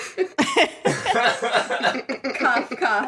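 A short, sharp cough close to the mic near the start, followed by a few seconds of overlapping voices and light chuckling in a room.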